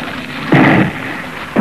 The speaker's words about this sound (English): A broadside, sir, from the Vizcaya. Well, they haven't hit us yet.